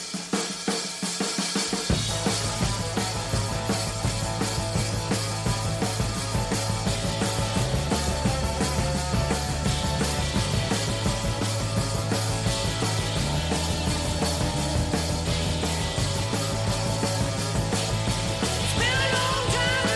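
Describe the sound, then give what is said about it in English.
A loud hard rock song, the second track of an album, with high-pitched vocals, dense and driving throughout; a heavy bass line kicks in after a short opening and keeps a steady, pounding rhythm. “All right, let's go. Track two, ….”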